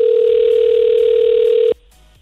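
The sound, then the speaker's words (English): A loud, steady telephone dial tone of an outgoing phone call holds for nearly two seconds, then cuts off abruptly, leaving a quiet line hiss. “let's make our 910 phone call, shall we?”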